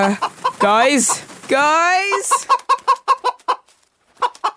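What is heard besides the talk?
chicken clucking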